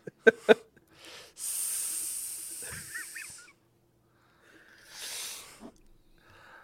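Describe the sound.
A voice imitates a snake with a long, loud, breathy hiss, followed after a short pause by a second, briefer hiss. A couple of sharp clicks come just before.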